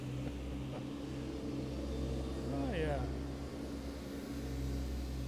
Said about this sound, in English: Oh, hold on a second. We've got a troop of ATVs screaming through here with buckets on it and lawnmowers.